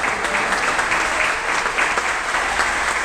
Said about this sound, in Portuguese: Aplauda ao Senhor.